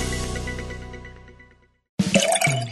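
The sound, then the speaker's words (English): Wine splashes and gurgles into a glass, its pitch climbing as it fills, following a fading ringing tone and a moment of silence. “Ah, a nice glass of wine is very refreshing after the end of a long day.”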